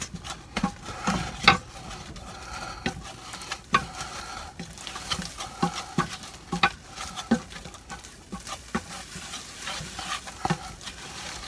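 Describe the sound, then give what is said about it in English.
A spoon scrapes and stirs a thick flour mixture in a pot with steady, irregular strokes, cooking out the raw flour for about 60 seconds, accompanied by a soft background sizzle of cooking, with no talking. “And then we're gonna stir all this, and then we're gonna cook out our raw flour for about 60 seconds.”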